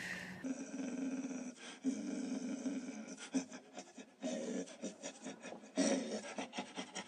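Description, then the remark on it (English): A person lets out a long, loud, raspy growl into the mic, imitating a dog. The gravelly rumble comes in several sustained bursts with brief breaks, and there is no talking. “That didn't sound like a dog. It sounded like dog. That was like a gorilla.”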